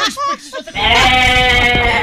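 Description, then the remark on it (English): A brief voice gives way to a single loud, drawn-out goat bleat, nasal and wavering, lasting over a second and filling the rest of the moment. “I need the sound effect of a goat”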